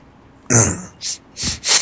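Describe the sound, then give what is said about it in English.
A throaty, voiced snort is followed by three short, hissy sniffles in quick, uneven succession, each a sharp nasal inhale. They are moderately loud, with no talking. “You're sniffling a lot, man.”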